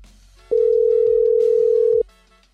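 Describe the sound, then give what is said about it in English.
A steady, loud telephone dial tone hums for about a second and a half as a phone call is placed, starting and stopping abruptly, with faint background noise around it and no one speaking. “Gavin, you ready to make the phone call?”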